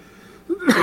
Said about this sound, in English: And, cough all over that mic, dude. Get it. Taking a drink of water. He clearly did not feel well.